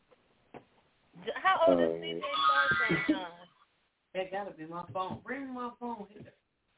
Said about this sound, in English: That gotta be my phone. Bring my phone here.